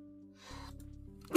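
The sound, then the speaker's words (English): A single sneeze: a breathy intake builds up, then a sudden loud, sharp burst right at the end, over a low steady background hum. “Excuse me. Bless you.”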